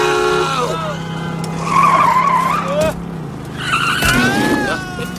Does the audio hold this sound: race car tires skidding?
yes